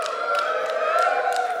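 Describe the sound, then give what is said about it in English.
An audience at the International Church of Cannabis cheers and hoots in a steady, loud wash of voices, with a few scattered claps popping through at irregular intervals. “Can I get a hoot? Can I get a holla?”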